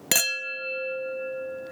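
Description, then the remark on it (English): Glasses of California wine clink together in a toast, one bright, sharp strike followed by a long, steady ringing tone that slowly fades, with no talking over it. “We got to cheers. Oh, cheers, bitch.”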